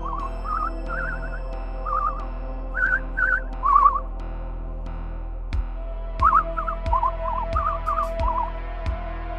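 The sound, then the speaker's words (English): Someone whistles a tune in short, warbling phrases with brief pauses, moderately loud, over a steady low mechanical hum of machines, with a few sharp knocks in the second half. “Someone's whistling.”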